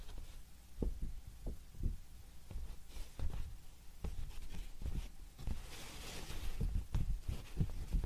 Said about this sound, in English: Onion skin paper.